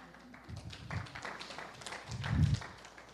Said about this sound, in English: I think you're clapping for her mostly, but you know all that.